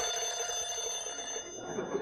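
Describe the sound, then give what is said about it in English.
A telephone rings with a steady, high electronic trill, its bright tones sustained across the whole moment without a break. “I bet you that phone rings before you can count to five.”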